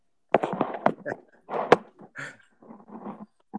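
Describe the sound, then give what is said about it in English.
A dog whimpers somewhere in the house, a run of short, uneven whines and soft yelps with brief pauses, moderately quiet and with no one talking over it. “Is there a dog around the house?”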